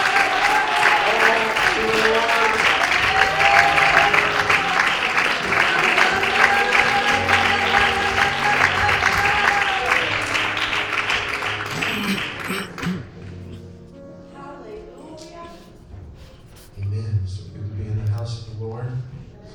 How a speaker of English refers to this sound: You're able to clap your hands and just shout.